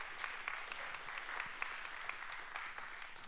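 audience round of applause

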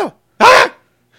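sneeze

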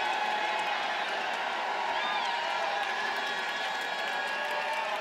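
audience shouting and cheering

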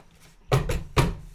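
door being opened

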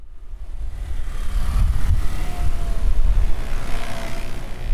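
busy city street traffic

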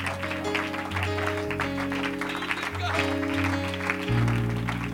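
audience hand clapping

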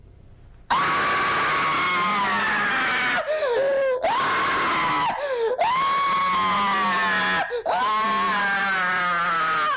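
man screaming loudly

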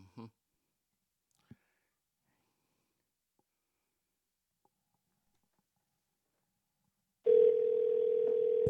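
telephone dial tone

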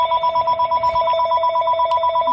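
home landline telephone ringing

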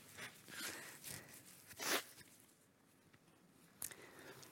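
blowing nose

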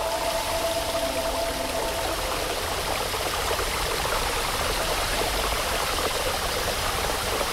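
flowing water

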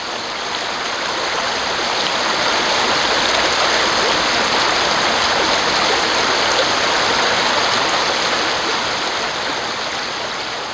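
flowing river water

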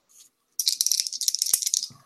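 dice rolling

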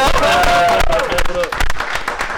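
audience clapping

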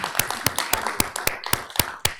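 audience applause

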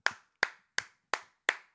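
clapping sound effect

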